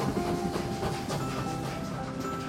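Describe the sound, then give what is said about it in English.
A train rolls steadily along the tracks past a banana farm, a continuous rumble with a faint rhythmic clickety-clack of wheels on rails. It sounds fairly loud, with no voices. “The story train is rolling past a banana farm where thousands of bananas are growing.”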